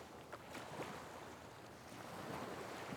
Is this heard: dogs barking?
no